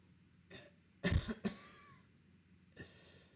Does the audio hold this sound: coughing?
yes